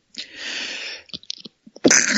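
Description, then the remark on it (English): A loud sneeze with a long breathy burst, followed by a few quick sniffs and clicks, then a second sharp, forceful sneeze. “Bless you.”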